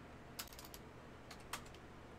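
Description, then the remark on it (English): Quick bursts of typing on a computer keyboard while entering a US state name, South Carolina, two short clusters of crisp key clicks separated by a brief pause, moderately quiet over a low background hum. “Much typing.”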